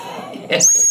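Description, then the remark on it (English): A sudden shrill blast from a rape whistle worn on a necklace cuts in about halfway through, holding a thin, piercing high tone to the end; it is loud, over a low murmur of background noise. “And that fucking jackass necklace with the rape whistle on it.”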